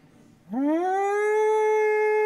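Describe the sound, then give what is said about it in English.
A civil defense siren winds up from a low growl into a loud, steady wail that holds at full pitch, heard alone with no voices. “So if you lived in London during World War II, at any moment, a siren could go off, like the one that we all listen to.”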